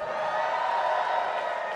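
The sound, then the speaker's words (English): A live crowd cheers and whoops in a steady, sustained roar, many voices blending together at a fairly even loudness from start to finish, as the audience answers by applause whether they dislike truffles. “And who out there by applause or booze disproves of truffles?”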